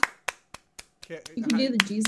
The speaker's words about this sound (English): Oh, stop clapping. It's fine. You keep clapping. Okay. Keep clapping. Yeah. Keep clapping.